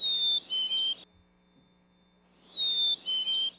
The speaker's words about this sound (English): And that's a black-capped chickadee.